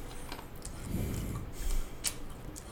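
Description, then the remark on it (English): Close, wet chewing and mouth clicks right against the microphone, with irregular crackly bursts and soft low rumbles, no talking. “Apologies for the chewing into the mic.”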